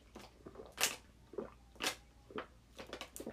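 Wet mouth sounds of someone drinking water: several distinct gulps and swallows with small smacks in between, spaced irregularly over a few seconds, with no talking.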